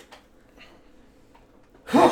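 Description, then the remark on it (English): Near-silence, then a single loud, explosive sneeze bursts out right at the end, sharp and breathy with a sudden onset. “Bless you. Bless you.”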